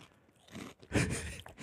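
Loud crunching as a sandwich of three Fritos corn chips with bean dip in the middle is bitten and chewed, a few bursts of crackly, brittle noise with the heaviest crunch in the middle, no talking.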